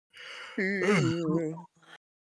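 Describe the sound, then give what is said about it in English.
A single long, voiced yawn, starting with a breathy intake, swelling into a wavering, groaning tone that sags in pitch, then trailing off with a short exhale. “I'm yawning, man. I'm literally yawning.”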